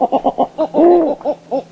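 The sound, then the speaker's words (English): A snowy owl gives its crew call: a quick run of short, hoarse barking notes, a longer drawn-out wavering cry, then two more clipped notes, loud and clear with no talking. “The most common vocalization is described as the crew call.”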